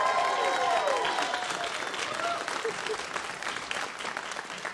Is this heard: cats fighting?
no